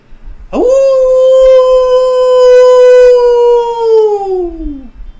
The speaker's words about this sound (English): You hear the scream, the howl of Hunter 629.